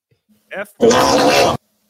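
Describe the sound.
A short, voiced grunt-like burst is followed by a loud, raspy fart that sputters for under a second before cutting off abruptly.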